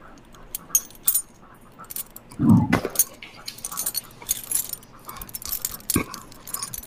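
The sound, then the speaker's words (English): A ring of very old keys jangles in irregular bursts of bright metallic clinking throughout, interrupted midway by a short, low rumbling thud. “It's keys, brother.”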